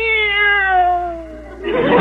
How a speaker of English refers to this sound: Meow! This cat is dog happy. I think she'd even respond to a dog she'd never heard of before, like Bowser.